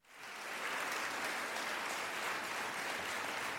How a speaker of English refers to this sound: Giving y'all a big round of applause.